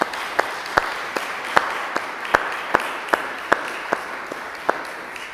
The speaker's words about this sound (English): Let's just say a wee word of thanks to our farmers for all the work that they put in on our behalf. Let's just give them a round of applause just now.